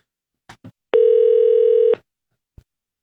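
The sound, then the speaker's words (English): Telephone handset clicks, then a single steady electronic tone lasting about a second as an outgoing call to a listener is placed during live radio and rings, followed by another faint click. No voices are heard. “If your phone rings right now and you get a call from a number that looks like ours, answer it”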